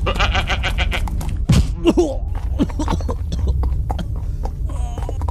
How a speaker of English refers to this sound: So, step two, sacrifice a goat. Well, this is all working out slick because I just happen to have a goat right here. Come here, Spanky. Come here, girl.